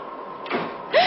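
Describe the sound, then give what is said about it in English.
The door of a woman's room moves with a soft scraping rustle, then ends in a short, high squeaky creak that rises and holds its pitch. A steady low hum runs underneath, and no one speaks. “That was the door of her room.”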